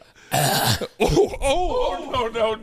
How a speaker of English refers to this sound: Well, you just ruined it with the cough. Don't cough anymore. Don't cough on that microphone. Don't cough.